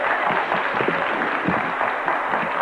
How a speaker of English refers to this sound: Give him a clap. He's at the back.